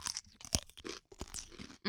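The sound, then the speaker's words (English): A wet crunch as a firm half-sour pickle spear is bitten, followed by a few moist chewing crackles and a brief rising squeak at the end. “So let's take a bite near not the mic.”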